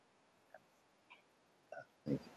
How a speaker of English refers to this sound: But I don't mean that background noise. I mean, like, it sounds like a clicking on the mic. When he was talking, it's like click, click, click kind of thing. Did you hear it?